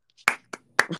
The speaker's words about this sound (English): Because I started clapping.